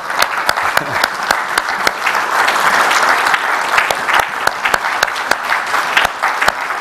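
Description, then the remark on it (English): A crowd applauds the mothers present, who have been asked to stand, a dense wash of many hands clapping with sharp individual claps popping out irregularly throughout, sustained at an even, fairly loud level. “Let's just acknowledge our mothers as Americans do when they're happy or whatever. Clap.”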